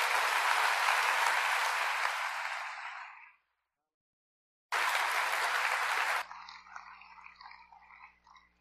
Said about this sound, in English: Let's give the Lord a clap offering as our pastor comes.